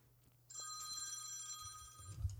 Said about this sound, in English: excuse me a second, my phone's ringing here, folks.